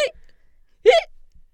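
A short, sharp hiccup pops out clearly near the middle, with the clipped tail of another vocal burst at the very start and quiet in between.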